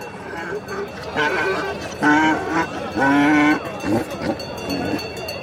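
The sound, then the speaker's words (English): Several loud, wavering sheep bleats sound one after another, over a steady murmur of crowd noise and animal calls at a busy outdoor livestock market on a hill beside an encampment, where donkeys, sheep and goats are being inspected and offered for sale. “On a hill on the other side of the encampment, there are donkeys, sheep, and goats being inspected and offered for sale.”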